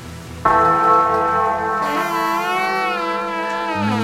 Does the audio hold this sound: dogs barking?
no